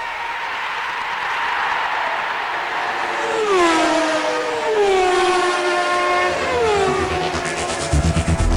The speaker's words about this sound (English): Okay, I'm deliberately playing the sound of a car because one of Finland's richest men has been handed an eye-watering, I'll give you the figure in a minute, speeding fine by the police.